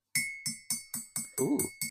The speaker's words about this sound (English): I'm ringing the Christmas bells. That was me actually knocking some nail clippers against a cup of tea. Oh. Sounds similar though.